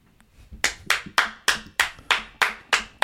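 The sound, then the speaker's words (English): Eight sharp hand claps in a steady, even rhythm, each one ringing out with a short echoing tail. No voices. “Fucking clap”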